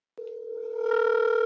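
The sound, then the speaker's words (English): A steady electronic ringing tone of an outgoing telephone call kicks in abruptly after a brief silence and holds unbroken, swelling slightly louder toward the end, with no voices. “I got money ringing.”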